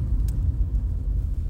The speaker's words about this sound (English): I'm in the car right now. You hear the driving noise. It's official. I'm riding around.